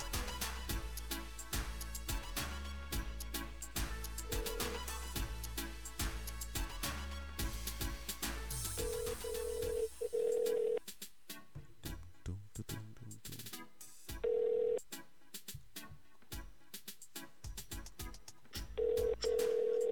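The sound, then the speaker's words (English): A phone line rings out with steady, repeating ring tones separated by pauses, preceded by a dense burst of electronic tones and music-like sound. Nobody speaks. “Let's get into this phone call real quick.”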